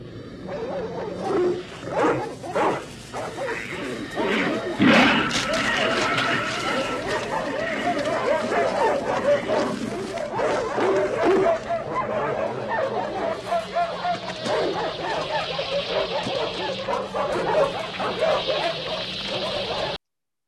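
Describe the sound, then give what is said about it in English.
Frantic dogs in a kennel snarl, yelp and whimper in a loud, chaotic tangle of growls and howls, continuous, with a harsh hissing screech building near the end, in a movie scene involving a new dog. “My number four is the dog kennel scene from The Thing.”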